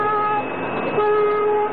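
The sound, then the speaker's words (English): A loud, sustained horn blast holds a steady, chord-like tone for the whole clip, its pitch dipping slightly partway through, with no talking. “Just listen to the horn.”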